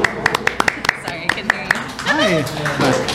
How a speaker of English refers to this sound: I know people can't really hear us because whatever, but they're clapping. They feel the vibe.